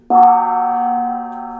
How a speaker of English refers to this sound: Oh, that was definitely the gong. Yeah, that's so nice.